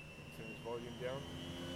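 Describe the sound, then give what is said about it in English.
A steady mechanical drone of an ex-military, 1970s American Vietnam-style helicopter winding up its motor, blades spinning above, with a high whine throughout as it rises with the door open into the morning air, while a voice speaks briefly over it. “But the winding up the motor, the blades spinning above, and the fact that we have the door open as we rise into the fresh morning air have me smiling like a little kid in a toy shop.”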